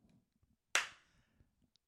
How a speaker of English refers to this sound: All right, you clap.